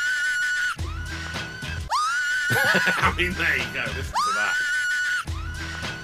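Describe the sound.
A shrill, high-pitched scream rises and sweeps repeatedly over loud, driving music, with a brief spoken phrase cutting in; the wailing cry sounds almost like a horse's whinny.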